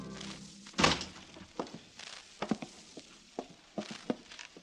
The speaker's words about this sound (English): drew the bar and opened the heavy walnut door.